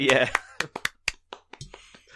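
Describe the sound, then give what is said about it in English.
A brief burst of voice gives way to a short round of sparse, uneven hand claps, about eight or nine sharp slaps, moderately loud. “Let's put a quick round of applause for COVID.”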